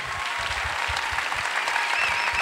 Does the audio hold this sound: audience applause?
yes